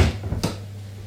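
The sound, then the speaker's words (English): An oven door, with pork belly slices cooking inside, shuts with a single sharp clack, preceded by a softer knock, while a low steady hum continues underneath. “Let me just close this door.”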